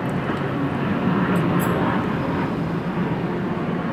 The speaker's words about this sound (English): I don't hear people. Very much, it's the internal combustion engine. I don't hear people.